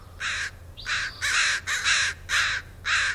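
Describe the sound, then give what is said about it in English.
A crow caws about seven times in a steady series, each call a harsh, raspy squawk, some coming in quick pairs, loud over a faint low hum with no talking. “But when you're walking past those trash cans, you're probably seeing crows.”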